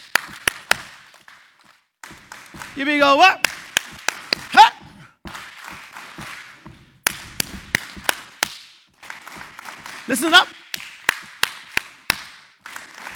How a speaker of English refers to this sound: I can stomp my feet. I can clap my hands. You guys going to clap with me? Here we go. Go.